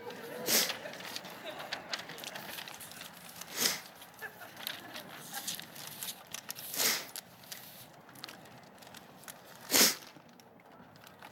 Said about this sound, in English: Open it. Pull on that. I got it for you. All right. Take the paper off. I got this. They wrapped it good for you.